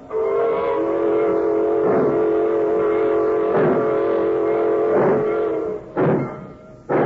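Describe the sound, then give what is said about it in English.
A freight train's horn holds a long, steady blast as the train pulls out, while rhythmic clanks from the rail cars punctuate it about every second and a half. Loud, with no voices. “By the time the cartons are moved off the freight cars, the train crew has inspected the track beyond the cut, found nothing wrong, and signaled for the train to stop. pulling out.”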